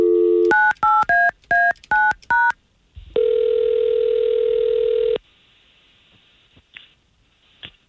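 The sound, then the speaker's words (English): A rapid run of six telephone keypad dialing beeps as radio morning show hosts at K92.3 in Central Florida call a man, then one long, steady ring tone on the line, followed by near silence with a few faint clicks. “and we've got his phone number, so we're going to try to call him right now, okay?”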